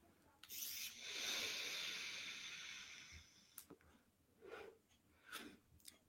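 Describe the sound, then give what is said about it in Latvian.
Airy hiss of someone drawing on a 0.6-ohm vape pod for about three seconds, followed by a few softer breathy puffs and exhales, with no talking. “Tvaiks, tīr ok, tiešām garšīgs.”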